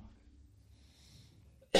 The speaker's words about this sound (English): I'm going to cough again. I'm sorry.